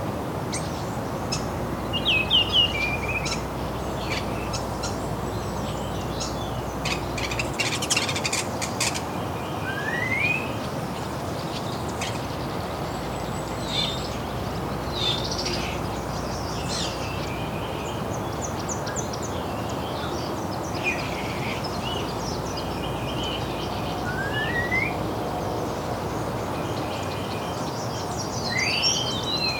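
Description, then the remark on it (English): A Wilson's Warbler, hidden among newly emerging leaves, sings quick, chattering phrases amid other scattered bird chirps, over a steady outdoor background hiss, with no one talking. “I think that's more Wilson's Warbler.”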